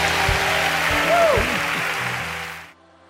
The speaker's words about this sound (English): Come on, one more time. Give God a good praise and a hand clap.